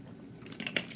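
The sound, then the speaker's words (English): A quiet sip from a drink: a few small wet mouth sounds and a soft slurp and swallow, with no talking. “So, one more sip.”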